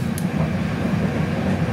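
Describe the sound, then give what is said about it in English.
A train in Serbia rumbles steadily into a railway tunnel, heard from inside the carriage as a continuous droning roar with a heavy low hum and no voices. “Just going to another tunnel.”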